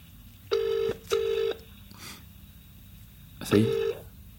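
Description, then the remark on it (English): A telephone ringing tone heard down the line during a call to Jose Mourinho: two short buzzing rings in quick succession, a pause, then another ring starting, steady and moderately loud over faint background hiss. “He's not going to pick up this phone.”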